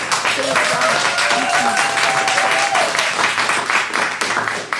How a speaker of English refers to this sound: Okay, so audience, can I have, by show of applause, who you believe the winner to be?